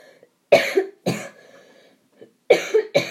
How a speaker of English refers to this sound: Sorry, I've got a cough today.